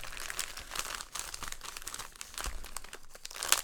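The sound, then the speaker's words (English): Continuous crinkling and crackling of plastic packaging as a mailed Father's Day gift package is torn open by hand, with sharp bursts of tearing and rustling throughout and no voices. “So let's go ahead and open this up. Oh, the packaging's fantastic.”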